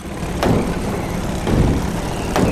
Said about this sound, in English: Bumper cars! Buckle up, because this monkey doesn't have a license to drive.